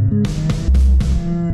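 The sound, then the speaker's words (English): A cow's moo, low and droning, cuts through a loud, distorted music loop with harsh percussive hits, a track being made as wrestling entrance music; the moo sounds briefly at full volume before the beat carries on. “It just punctuates itself with the moo.”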